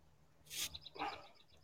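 Quick, high chirps repeat in a steady series, like small birds singing faintly behind a caller on a phone line after a brief rushing burst of noise, with no one talking.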